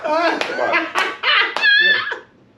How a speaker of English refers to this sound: Oh, shoot. I just feel like I clapped a bunch of times right now. This mic is perfect.